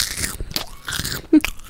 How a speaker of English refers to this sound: And just chomping in my ear.